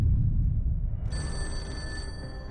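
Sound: telephone bell ringing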